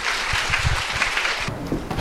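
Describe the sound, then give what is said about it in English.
A Well of Life audience claps steadily in a dense, crackling round of applause welcoming a married couple of speakers, staying fairly loud, then thinning out toward the end. No one speaks. “So please give them a warm Well of Life round of applause.”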